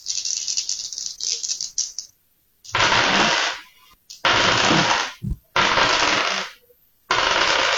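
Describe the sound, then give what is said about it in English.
Dice rattle in a series of loud, gritty bursts, each a second or so of dense clattering separated by brief pauses, with no voices. “They're dice. Yes, you nailed it.”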